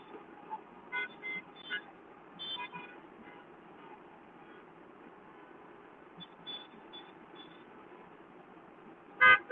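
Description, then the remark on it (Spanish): Several car horns honk in short, repeated toots over a steady rumble of vehicles moving past, ending with one loud blast, as a caravan of cars drives in, in Miami. “Mírenla, miren cómo están entrando los carros para acá.”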